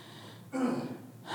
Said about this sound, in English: Are you clearing your throat because I'm joking too much